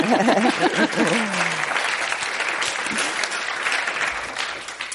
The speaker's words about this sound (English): Yeah. I sense more applause.